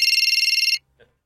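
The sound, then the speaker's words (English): A telephone-ringing sound effect is played: a rapid, bright, high-pitched trill, its fast pulses buzzing for under a second before cutting off abruptly, followed by a faint brief click. “So you're going to play the sound of the phone ringing?”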